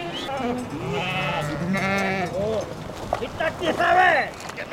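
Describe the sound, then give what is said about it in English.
Several sheep bleat in overlapping, wavering, loud cries as they follow a goat across the Los Pinos River in one surge, over a steady rushing background of water and movement, with a final cluster of sharp bleats near the end. “The sheep follow the goat and start crossing in one torrential surge.”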